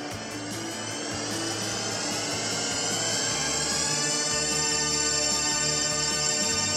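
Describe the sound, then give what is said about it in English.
The THX theater intro sound: a dense cluster of sustained tones that glide and converge into one huge chord, swelling steadily louder with a rumbling low end, no voices. “Like, no more THX anymore anywhere?”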